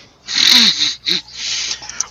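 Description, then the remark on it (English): A voice imitates a hooting call to get a child to come, with breathy, airy blows: one longer hoot, a short second one, then a drawn-out softer exhale trailing off. “I make a hooting noise for the child to come.”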